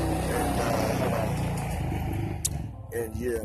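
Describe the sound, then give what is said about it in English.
A four-wheeler ATV engine rumbles loudly outdoors as it passes, a steady low drone that eases off, with a man's voice briefly speaking near the end. “I'm outside right now. I got a motherfucking motorcycle passing by.”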